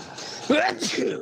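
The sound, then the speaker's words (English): A single sneeze erupts partway through, a sudden voiced burst with a sliding pitch and breathy hiss, followed by a brief trailing vocal sound. “Bless you. Bless you.”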